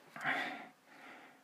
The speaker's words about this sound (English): And on top of that, if you hear me speaking, breathing heavy, it's because my breath is coming right back into my face.